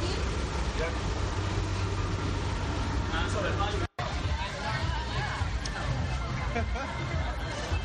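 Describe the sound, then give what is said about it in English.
Steady ambience inside a prison bus, with a low engine rumble beneath a continuous murmur of overlapping voices. The noise briefly cuts out near the midpoint, then resumes. “We're literally on a prison bus.”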